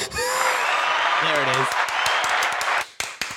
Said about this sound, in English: Wait, where's the clapping button?